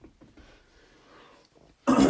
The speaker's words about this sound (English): What are you sniffing? Spruce. What are you sniffing? A red spruce? Spruce.